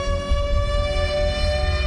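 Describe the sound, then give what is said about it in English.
A loud tornado siren holds a steady, sustained wailing tone for the whole stretch, with a low rumbling hum underneath and no voices. “The siren is getting louder and louder.”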